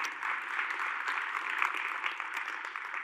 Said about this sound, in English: If you want to clap, that'd be a good place.